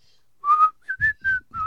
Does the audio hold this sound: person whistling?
yes